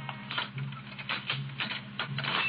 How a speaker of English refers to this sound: Suddenly, he hears footsteps in the corridor and springs to his feet, every nerve alert.